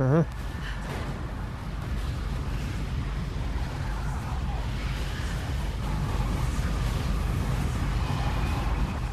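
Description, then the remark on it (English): A strong wind rushes in through an opened door, roaring steadily as a loud unbroken rush of air with low rumbling gusts that holds its level for the whole stretch. “This 5 mile wind is actually 50.”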